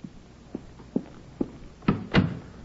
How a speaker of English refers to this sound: Annie, close the door. Close it.